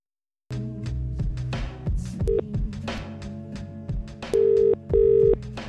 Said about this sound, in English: You put me on another line, mate. I hear you ringing someone else.